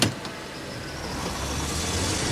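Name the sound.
car driving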